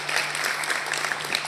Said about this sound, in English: So thank you, and if you could all just give everybody, give them a round of applause, thank you.